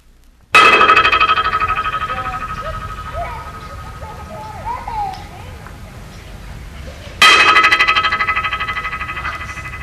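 A sharp clap sets off a rapid train of repeating echoes off the parabolic bridge in Stanley Park, which echoes a sound up to 50 times; they blur into a metallic, ringing buzz and slowly fade. Faint chirps fill the pause before a second clap repeats the effect.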